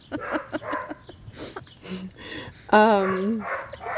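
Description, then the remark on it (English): A dog barks in a series of short, sharp yaps, ending with a louder, drawn-out bark that has a whining edge, while faint voices murmur in the background. “How about gritting that dog fucking stopping barking?”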